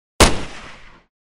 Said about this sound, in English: Nicole, standing in the edge of the dining room, shoots Darius in the back. Darius crashes against the wall and slides down, but he still has a shot, and he takes it.